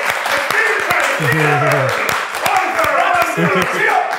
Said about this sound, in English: Let's start clapping right now.